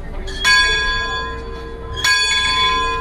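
A bell is struck twice, about a second and a half apart, each strike ringing out with a bright, sustained metallic tone that lingers and slowly fades. No one speaks.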